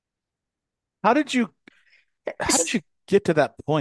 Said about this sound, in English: Bless you.